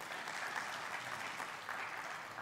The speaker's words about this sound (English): Good to have the choir as always, and a nice full choir behind us. And so let's have a round of applause again for our choir today.